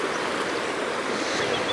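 Steady watery swishing and sloshing, fairly loud, of legs wading through shallow water along a very boggy shoreline, sinking up to the shins; a continuous wash of sound with no voices.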